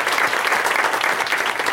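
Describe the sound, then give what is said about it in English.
A round of applause from a talk show audience welcoming a first-time guest, screenwriter Tess Morris. Steady, dense clapping stays loud and even throughout with no voices standing out. “Let's have a round of applause for Tess Morris, everybody.”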